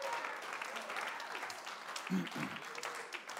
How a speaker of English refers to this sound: Come on, can we give the Lord a good hand clap?